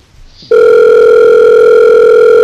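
After a brief quiet moment, a loud, steady electronic telephone tone comes in on the line and holds unbroken to the end, with no voices.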